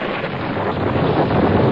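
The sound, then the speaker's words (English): A stormy wash of wind and rain roars steadily and fairly loudly throughout, dense and unbroken, with no distinct thunderclap standing out and no voices. “The thunder god will become silent, and his wife shall stop the rain.”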